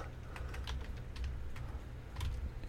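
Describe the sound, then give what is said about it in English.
Rapid, irregular clicking of keys on a computer keyboard, with a steady low rumble underneath and no voices. “I can't type for shit when there's a microphone over my keyboard.”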